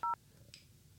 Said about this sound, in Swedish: Nu ringde jag 070 och så ringde. Alltså. Ja, ja, det är fel. Du måste slå fler siffror